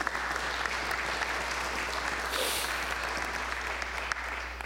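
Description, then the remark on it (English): An audience breaks into steady, sustained applause as a hand clap of worship for the Lord, a dense wash of many hands clapping at an even level for several seconds, with a low hum underneath. “Can you give the Lord a hand clap of worship?”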